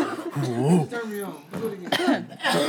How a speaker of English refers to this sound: I'm not even smoking. I'm coughing over here. You got a secondhand high.